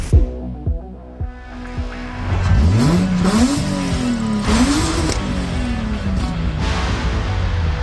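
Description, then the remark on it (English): A Subaru car with a swapped-in flat-six engine idles with a low rumble, then revs hard several times, its pitch climbing and falling in loud sweeps with no talking. “All right, hey, those car sounds. I played them again.”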